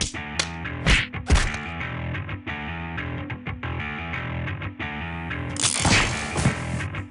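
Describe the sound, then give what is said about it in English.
A few sharp, loud slaps to the face crack out, scattered across a dense, distorted musical backdrop that plays throughout. “What you need is a good slap.”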